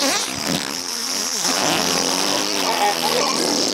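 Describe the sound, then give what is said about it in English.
A voice makes a long, buzzy raspberry imitating a fart, sputtering steadily for several seconds and fairly loud, with a strained, vibrating quality throughout. “And he tries to fart it out.”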